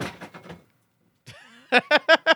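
A quick series of clattering knocks as a person knocks down a pile of objects that tumbles over, then a short pause before a few loud, rhythmic bursts follow.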